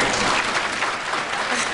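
Steady applause from a studio audience, a dense, even wash of many hands clapping at a constant moderate loudness for the whole stretch, with no voices standing out.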